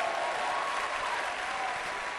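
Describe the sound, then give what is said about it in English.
A crowd claps their hands for the Lord, many hands blending into a dense, even wash of applause that holds at a constant level for the whole stretch, with no voices standing out. “If I were you, I'll clap my hands for the Lord.”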